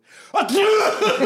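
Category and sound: human body sound, human sneeze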